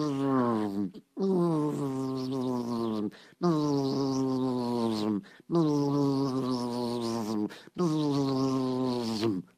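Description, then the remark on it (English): Loud, droning buzz of a swarm of hundreds of thousands of bees following a swarm on a twig, repeating in four sustained bursts of about two seconds each with a slightly falling pitch, separated by brief silences. “All those hundreds of thousands of bees are following it.”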